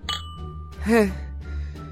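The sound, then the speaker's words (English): Glasses clink together in a toast, a single bright chime near the start that rings out briefly before a voice speaks over a low background hum. “A toast for our new friendship.”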